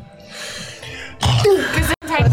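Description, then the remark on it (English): A soft breathy hiss gives way to a loud, abrupt sneeze with a harsh, noisy blast, followed after a brief pause by a shorter voiced burst. “Bless you.”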